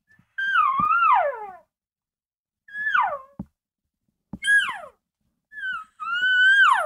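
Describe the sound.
An imitated elk cow whine call through a bugle tube: four nasal, whining cries that slide downward in pitch, separated by short silences, with the last one longest. No talking.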